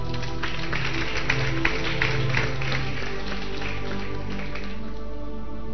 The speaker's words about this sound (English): Let's clap for this guy.